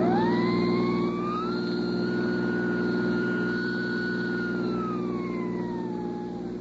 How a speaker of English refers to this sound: Cops ahead. Get your gas out. Step in that siren, Mark, and drive like hell.